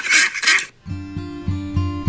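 Two loud, raspy duck quacks in quick succession, followed by a lower, buzzy droning sound that pulses a few times. No one speaks.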